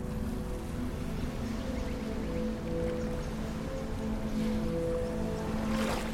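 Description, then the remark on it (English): A steady wash of ocean water rolls on without pause, mixed with a low, sustained droning hum, with a slightly brighter splash of surf near the end. “Surrender them to the ebb and flow of the waves.”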